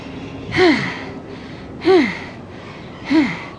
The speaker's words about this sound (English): Stop that breathing now.